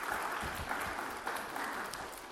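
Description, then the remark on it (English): A crowd of people claps steadily, a dense, continuous wash of applause that stays at an even loudness throughout, with no voices standing out above it. “Yeah, that deserves a round of applause.”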